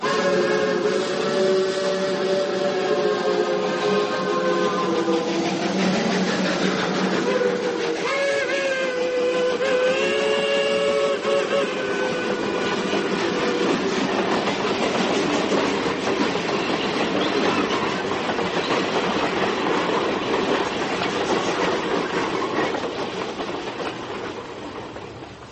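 A train enters a tunnel: loud whistle tones wail and bend over the rumbling wheels, then give way to a dense, steady roar that fills the remaining seconds. No one speaks.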